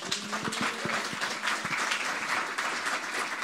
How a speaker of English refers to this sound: And I thought it was so good to hear, and I want him to share. Come on, give him a hand.